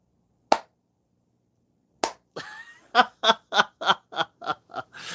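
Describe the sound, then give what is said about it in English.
A slow clap: two sharp, isolated claps spaced well apart, then a quicker, steady run of about nine louder bursts, with snickering laughter mixed in. “It's like that slow clap.”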